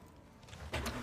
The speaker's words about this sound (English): Press X to start the engine.